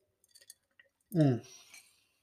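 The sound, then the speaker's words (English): A few faint glass clinks and taps, then a short sip of 40 Creek whisky followed by a loud, falling voiced sigh of satisfaction and a breathy exhale. “Sorry, I'm just going to pause for a little sip of 40 Creek here.”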